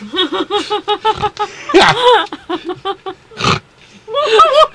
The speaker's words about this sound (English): What was that? But did you really just snort?